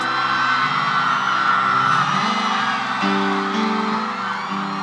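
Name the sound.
audience screaming and whooping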